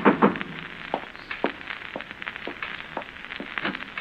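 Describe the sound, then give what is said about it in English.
A steady series of sharp knocks on a door, about two per second, repeats for several seconds over a faint hiss, following a brief louder clatter at the start. No one speaks. “Someone's at the door.”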